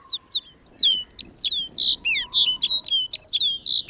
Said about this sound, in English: Now it's clear that rolling white cloud isn't snow at all, but a flock of snow buntings. These birds bring the barren landscape to life.